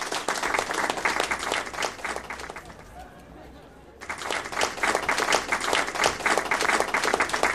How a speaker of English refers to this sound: Thank you, good people. Thank you. Let's have another round of applause for our players.